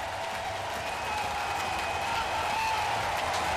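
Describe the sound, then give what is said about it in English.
A stadium crowd at Busch cheers Albert Pujols's 680th home run for the Cardinals, a dense, unbroken roar of many voices that stays loud and steady for several seconds. “And this crowd absolutely loves it.”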